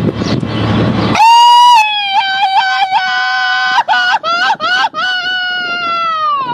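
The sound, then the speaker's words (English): A loud Mexican grito: a long, piercing high-pitched yell held for several seconds, then breaking into warbling, stuttering cries near the end, after a brief burst of rough noise. “Whenever you do the Mexican yell, you know what that prompts me to do?”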